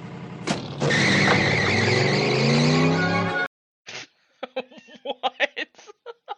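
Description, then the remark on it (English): A loud monster truck engine roars and revs for a few seconds with harsh tire skidding, then cuts off abruptly, followed by short bursts of what sounds like laughter. “You don't just drive your pickup truck around the woods? It's not a pickup truck. That's a monster truck.”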